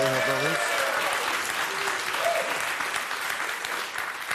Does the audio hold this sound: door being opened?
no